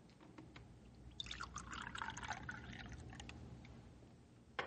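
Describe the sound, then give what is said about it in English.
Coffee pours steadily into a cup for a couple of seconds, a bubbling trickle rising in pitch as it fills, with a soft clink at the end. “Here, I pour you one more cup of coffee, Rick.”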